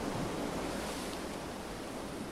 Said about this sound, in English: You are listening to the relaxing sounds of the ocean and wind.